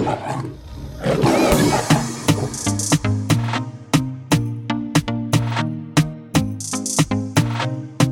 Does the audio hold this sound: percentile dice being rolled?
no